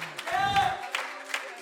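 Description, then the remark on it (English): A crowd claps and cheers together, with raised voices giving a shout of praise to God over steady, dense applause for a brief, lively burst. “Come on, clap your hands one more time and give Him a shout of praise.”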